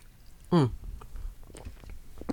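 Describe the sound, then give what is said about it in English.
A brief sip and gulp of Pepsi, a non-alcoholic drink, from a red cup, with a short voiced exhale, followed by quiet wet mouth clicks and swallowing noises. “I gotta take a sip for that. No alcoholic drinks, just a red cup with some Pepsi in it.”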